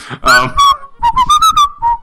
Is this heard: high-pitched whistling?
yes